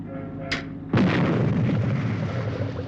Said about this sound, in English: It's a bit difficult to explain, but that was a shot of Supercar firing its engines. There was a fish tank in front of the screen, and in there was a piece of coral or seaweed.